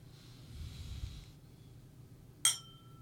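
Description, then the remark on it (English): A single bright clink of glasses touching in a toast in studio at the start of the Catholic Man Show, with a short ringing tail, following a few seconds of soft low rumble and breathy noise. “So raise your glass.”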